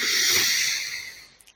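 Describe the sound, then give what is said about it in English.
A single long, airy inhale, a steady breathy hiss that gradually fades, followed by a couple of faint clicks. No one speaks. “It's just a nice breathe in.”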